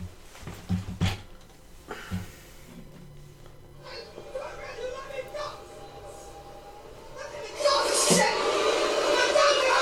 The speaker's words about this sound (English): This is a scene from the New York subway, I believe. Always a fun source.